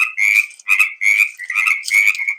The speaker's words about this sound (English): And I'm playing the frogs off my phone.